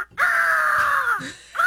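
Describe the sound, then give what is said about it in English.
An eagle screeches loudly: one long, harsh, slightly falling cry that lasts about a second, then a second cry begins just as the sound ends. No one speaks. “That eagle's angry about that.”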